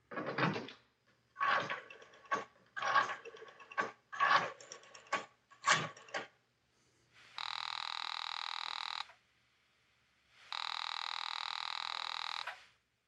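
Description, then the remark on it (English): A telephone receiver is lifted and a dial clatters through a quick series of clicks and knocks, followed by two long, steady ringing tones on the line, as a call is placed to a country club. “You reach for the phone and call the club.”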